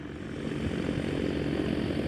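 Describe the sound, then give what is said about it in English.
A small white propeller plane, a Bat Hawk made in South Africa, drones steadily as it approaches to land, its engine a continuous low hum with a faint buzzing texture, holding a constant loudness without any voices. “where we see a small white plane approaching us.”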